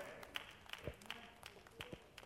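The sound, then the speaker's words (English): About four or five scattered, sparse hand claps from an audience, each a sharp crisp snap with uneven gaps, faint over a low background murmur. “Boy, I only got about 4 or 5 hand claps on that one.”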